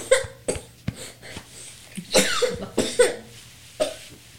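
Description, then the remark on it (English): A girl who keeps waking up from bed gives about eight short, harsh coughs, some in quick pairs, with faint tonal squeaks between bursts and a low background hum. “I need you to keep that under control. You're going to be on my podcast, all right? No cough.”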